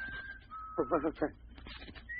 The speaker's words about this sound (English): Sounds like a bird, maybe. Birds don't whistle like that. It's nothing, yes. It must be nothing. We both hear it.